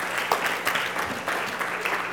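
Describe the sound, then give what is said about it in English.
An audience claps together in a quick hand clap of praise for the worship, a steady, dense burst of applause, the many overlapping hand claps forming a bright, continuous wash of sound with no talking over it. “Man, let's just give a quick hand clap of praise just for the worship today.”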